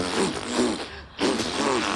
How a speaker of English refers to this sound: The farts on the bus go round and round.